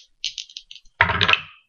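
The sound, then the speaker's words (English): Two yellow dice from DragonCon, with the DragonCon logo on one side, are rolled in a box during a live game with the numbers 1 through 10. They rattle with a quick run of light, bright clicks, then tumble into a louder, fuller clatter that lasts under half a second before stopping. No one speaks. “I've got two dice. These are yellow dice that I got in DragonCon a few years ago.”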